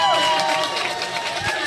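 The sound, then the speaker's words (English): A loud crowd cheers in a steady, unbroken roar, with individual voices shouting and whooping over the wash of noise for the whole short stretch. “Listen to that crowd.”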